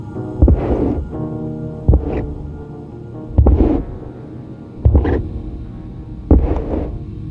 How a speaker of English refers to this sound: Tonight, as he tried to watch a movie for a change, he was just getting comfortable, thinking that perhaps he'd been left alone for the night, when the familiar sound started at the bottom of the basement stairs. Ka-thump, ka-thump, ka-thump.